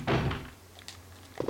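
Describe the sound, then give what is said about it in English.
A heavy door mechanism in a video game thunks loudly as a red door is unlocked with a helmet key, then a few lighter metallic clicks follow, like the key turning in the lock and the door unlatching. No one speaks. “Okay, this red door. You've used the helmet key.”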